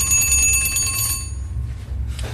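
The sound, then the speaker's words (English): An old mechanical alarm clock's early alarm mechanism, set by a disc at the front of the dial behind the hands, rings its bell in a rapid, metallic clatter for about a second, then stops and the ringing tone fades away, leaving a low background rumble. “Not enough to waken the dead, but certainly enough to get you up in the morning.”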